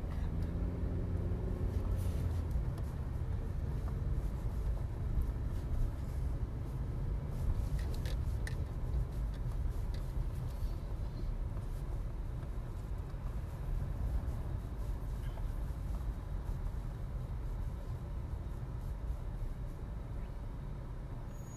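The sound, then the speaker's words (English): A steady low car engine rumble idles continuously, fairly loud, while the car waits at traffic lights, with faint traffic noise and a brief hiss of an air brake from another vehicle. “We might want to turn off the engine actually.”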